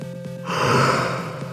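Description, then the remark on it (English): A single voice imitates a crowd's gasp: after a brief low hum, a sudden loud, breathy rush of air swells and slowly fades over about a second. “That's a gasp of everyone in the crowd.”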